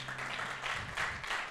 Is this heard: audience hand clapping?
yes